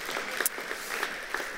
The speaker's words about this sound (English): We thank God for you and we applaud you in this place. Thank you so much.